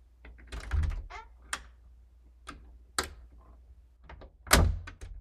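A door, pushed open by a woman as she enters, clicks shut amid a scattering of sharp, dry ticks and taps at irregular intervals, with the loudest latch-like click near the end and no voices.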